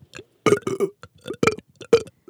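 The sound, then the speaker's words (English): A series of short, croaky forced burps, about four or five guttural bursts in quick succession with brief gaps, someone straining to belch with no talking in between. “I can't make myself burp.”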